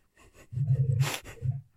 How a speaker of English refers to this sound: All right, I just farted at like 1854, so you'll see that. the waviness, or I'm sorry, 1852 on the timestamp on.